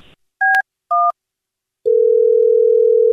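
Two short two-note keypad beeps sound in turn as someone dials a phone extension, followed after a pause by a steady, unbroken low telephone dial tone that holds loudly to the end. No voices are heard.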